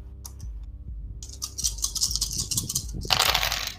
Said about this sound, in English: How many dice did you just roll? 66.